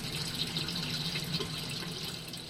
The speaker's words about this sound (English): The fish deposit their waste in the water. That waste acts as a fertilizer for bib lettuce plants, and the water filters through the gravel to drip back to the fish.